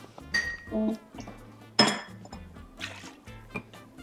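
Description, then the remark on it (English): Mint, sugar and whiskey being muddled in a glass: a few light clinks and scrapes, then one sharp knock against the glass, followed by softer tapping and grinding, with no talking. “Put your whiskey and your sugar and your mint into the place where you're pressing.”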